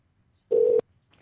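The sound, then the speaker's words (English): A single short burst of a steady electronic ringing tone on an outgoing phone call, loud, lasting about a third of a second with near-silence on either side. “It's ringing.”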